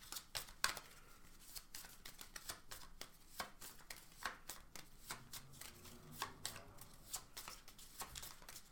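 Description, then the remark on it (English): Shuffling of a deck of cards: rapid, irregular crisp flicks and riffles repeating throughout, with soft papery rustling between the sharper snaps and no talking. “So I have to turn these over and shuffle these.”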